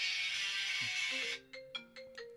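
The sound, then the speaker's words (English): A burst of loud hissing static cuts off into a bright electronic phone ringtone playing through a laptop connected to the phone, short melodic beeping notes repeating in a quick pattern, fairly loud with no talking. “Yeah, my phone's connected to my laptop.”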